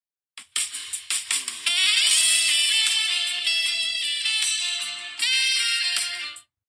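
A phone ringtone plays a pop song melody: a bright, tinny synth tune with a sustained saxophone-like lead, loud, running alone without any talking for several seconds.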